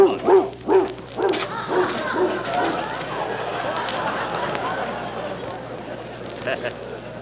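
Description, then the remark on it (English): A dog barks and yips repeatedly in quick bursts at first, then continues more loosely amid a busy background of voices and outdoor noise, moderately loud. “Quite a dog.”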